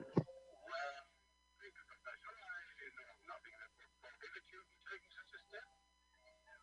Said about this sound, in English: So we get the goofy music, and he just hangs up the phone. He's like, huh? Click.